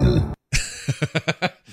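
A deep, rumbling burp from a movie scene, then a burst of dramatic music with about five short, punchy hits in quick rhythm, all loud, no talking.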